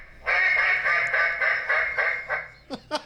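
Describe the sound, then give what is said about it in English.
A person imitates a duck, a long, loud, nasal quacking run pulsing in quick succession, followed by two short, sharp squawks at the end, with no talking. “It's a duck. A duck. Obvious.”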